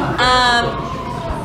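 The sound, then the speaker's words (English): A loud emergency vehicle siren wails, its steady high tone sliding gradually downward over about a second, with a faint murmur of background noise beneath it. “Maybe after these sirens go off.”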